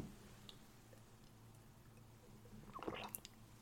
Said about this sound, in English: I had to take a sip of water.